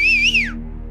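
A man whistles once to call a dog in a pile of air conditioning units and debris: a clear, loud, wavering tone that glides downward and ends, leaving a steady low hum in the background.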